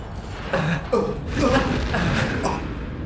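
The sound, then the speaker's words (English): A voice imitating an anime-style hurt noise: a few short, strained gasping and groaning bursts with wavering pitch, moderately loud over a steady low background hum. “That's like the I'm hurt anime noise.”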